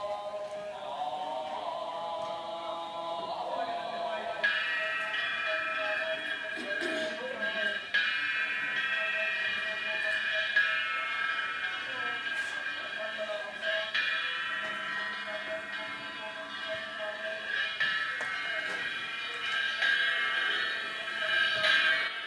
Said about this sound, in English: And the first instrument that we're going to hear then in the ceremony is the nyohachi, the cymbals.